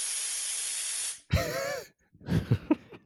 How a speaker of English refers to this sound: Is that like someone passing gas? It's a spray paint can? I don't know what that is. An aerosol can of some kind?